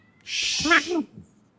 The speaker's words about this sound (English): And I don't know if you can hear that. My dogs are probably barking at somebody walking across the street. My cat's screaming.